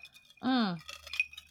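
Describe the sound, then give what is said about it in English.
Drinking glasses clink once in a toast, a quick, bright tap with a faint ringing tone, just after a drawn-out voice sounds. Light background noise continues throughout. “Hi, cheers, baby. Cheers. Cheers. Ring-a-ding-a-ding-a-ding-a-ding-a-ding-a-ding.”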